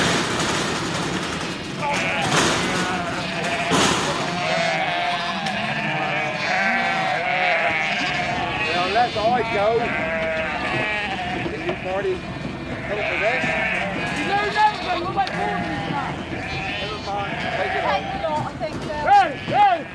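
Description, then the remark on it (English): A large flock of sheep bleats constantly as it is rounded up for shearing at a yearly summer sheep shearing event in Two Bridges, County Devon, England, dozens of wavering, overlapping calls forming a dense, loud chorus, with individual cries rising out of the din throughout. “John Levick Drever recorded this herd of woolly bleaters being rounded up for a trim.”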